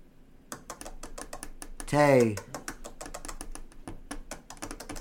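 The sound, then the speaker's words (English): A rapid series of sharp, dry taps clicks out an uneven rhythm like a Morse code message, with a brief louder vocal sound breaking in partway through before the tapping continues. “If you're really into the dirty toy box, look up this tapping sound right here.”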